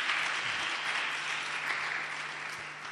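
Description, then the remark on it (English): An audience claps by way of introduction to the message, a dense, continuous wash of many hands with no clear individual beats, holding fairly even in loudness for the whole stretch before easing slightly at the end. “So clap from this just by way of introduction.”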